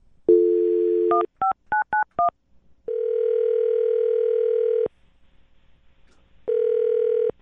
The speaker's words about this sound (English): All right, I'm going to dial the phone right now, get him on the phone, okay? Okay. Here we go.